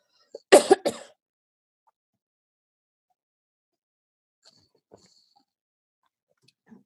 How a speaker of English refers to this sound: I'm going to take a quick drink of water. Excuse me.